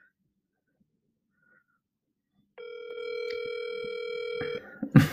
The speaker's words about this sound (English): So let me call right now. Hopefully y'all can hear this phone call.